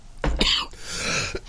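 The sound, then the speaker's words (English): A harsh bout of coughing with rough, spluttering bursts and a throaty rasp, followed by a final short cough, no words spoken. “And I'm sorry, I'm really coughing and spluttering.”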